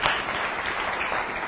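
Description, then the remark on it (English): An audience claps together in a brief, steady burst of applause, dense and moderately loud, with no voices over it. “More recently, you can clap.”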